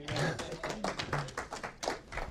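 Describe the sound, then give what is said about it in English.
An audience at a 1 Corinthians study breaks into a short round of clapping on finishing the section on idol meat, with dense, uneven hand claps filling a couple of seconds at moderate loudness and a faint voice murmuring underneath. “Go ahead, you can clap.”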